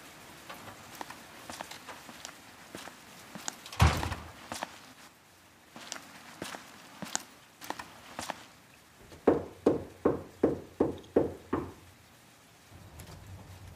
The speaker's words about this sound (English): He opens the door, a crack just enough to see who it is.